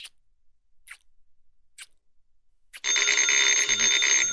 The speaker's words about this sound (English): The phone's ringing. The phone's ringing. Oh, whoever it is won't give up.